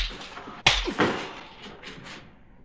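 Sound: slap across the face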